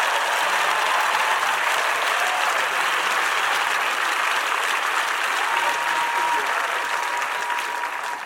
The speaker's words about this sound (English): Hey, why don't you stand to your feet and let's welcome Carl Lentz. Come on, Hillsong New York. Come on, clap your hands for Carl Lentz. Show your love.